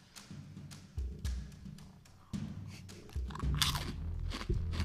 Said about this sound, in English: don't chew that close to the microphone. These are crunchy. Did you not hear me say they were crunchy earlier?